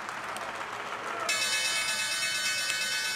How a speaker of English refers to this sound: There's the opening bell, guys